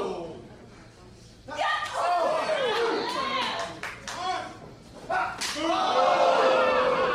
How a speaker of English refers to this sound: Oh, another. The back of the head. Open hand slap. Oh!